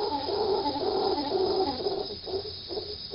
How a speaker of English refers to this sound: Open the Rainforest Connection app at the right moment, and you might catch a troop of howler monkeys.